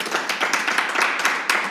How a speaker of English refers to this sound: Eric Garcetti. Please clap.